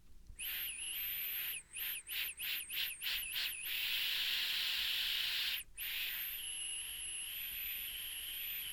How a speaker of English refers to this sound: That's definitely a whistle. That's 100% a whistle.